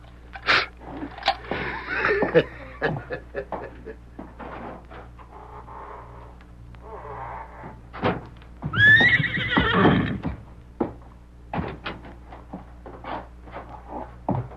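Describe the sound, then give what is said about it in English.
A horse whinnies loudly partway through, while scattered hoof clops and shuffling knocks sound on a hard floor before and after it, with no talking. “The horses look fine.”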